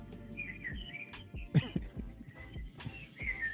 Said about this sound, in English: Yo, why we keep getting the fucking voicemail with the birds? What is that? I think that's her voicemail. Okay. That's got to be her voicemail.